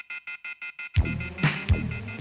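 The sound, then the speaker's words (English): A telephone off-hook warning tone blares in about six quick, loud, harsh electronic beeps, then abruptly gives way to music with deep booming bass hits. “Would someone please hang that phone up?”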